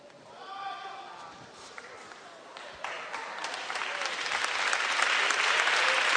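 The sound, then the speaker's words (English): Applause from a church audience builds steadily, starting as scattered claps with a brief voice over it, then swelling into dense, loud clapping that fills the final seconds. “Don't clap. Don't clap.”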